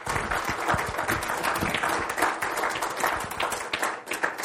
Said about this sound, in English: Would you give a hand clap to the spirit of Job?